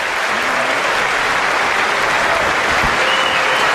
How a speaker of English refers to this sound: Mostly women in Congress raising their hands, clapping.